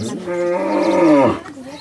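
A single cow moos, a loud, drawn-out bellow of just over a second that swells and then drops off abruptly, followed by quiet background.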